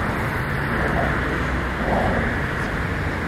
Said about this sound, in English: She's over there taking pictures of the traffic as people are speeding by.